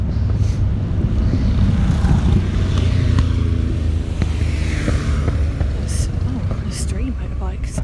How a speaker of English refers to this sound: It's a motorbike.